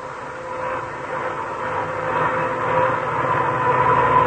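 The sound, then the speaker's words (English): A family car's worn-out gears hum with a steady whining drone over broad road-like rumble, gradually growing louder across a few seconds, with no voices. “Now, when you hear a humming like that, you know that car has worn-out gears.”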